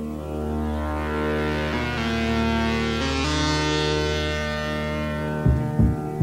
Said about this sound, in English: You will know it is time to listen when you hear the chime like this. Let's begin now.